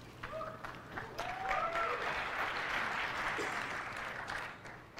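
The audience at Macworld 2007 applauds steadily as Steve Jobs introduces the iPhone, dense clapping mixed with scattered cheers and whoops, loud throughout before tapering slightly at the end.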